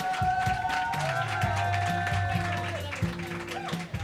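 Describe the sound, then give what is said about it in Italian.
A crowd claps steadily and densely throughout at the Beyond the Garden event, applauding the Florence volume, mixed with sustained whistles and cheering tones that rise and fall, loud and continuous over four seconds. “Ciao ragazzi, benvenuti Beyond the Garden, questo è l'applauso per il volume di Firenze, facciamoci sentire.”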